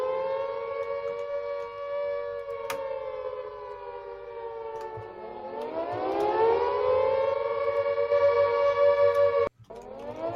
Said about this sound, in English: So do you hear the air raid siren? It's spoiler time. We're about to spoil a movie.